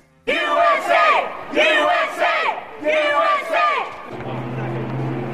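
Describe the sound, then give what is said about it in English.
Trump supporters outside Trump Tower in New York chant a loud, rhythmic two-beat slogan of support three times in unison, voices strained and shouting, before the chant gives way to a steady low hum and murmuring. “Here are some Trump supporters outside of Trump Tower in New York earlier today, chanting their support.”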